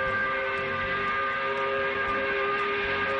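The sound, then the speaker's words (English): A 5 o'clock whistle blows on a Friday to mark the end of the work week, one long, unbroken blast, a steady chord of bright tones that holds the same loud pitch for the full length without wavering or fading. “We do it by blowing the 5 o'clock whistle.”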